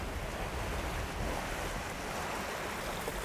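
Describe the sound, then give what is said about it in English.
A steady, broad roar of emerald-colored ocean surf washing onto a scenic sandy beach, with a rushing, windy texture and no distinct breaks between waves. No voices can be heard. “A scenic sand beach against the Emerald Ocean.”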